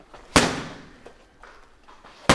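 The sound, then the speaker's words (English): Two loud, sharp punches smack into boxing mitts about two seconds apart, each a crisp slapping crack, with a few faint softer taps in between and no voices. A boxing coach wears the mitts in a boxing ring while a gloved person punches them. “He gives me a few pointers, then I start punching his boxing mitts.”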